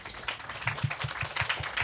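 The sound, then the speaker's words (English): A crowd applauds a film review, a dense patter of many hands clapping steadily, with a few sharper individual claps standing out, moderately loud and without any voices over it. “Round of applause, guys.”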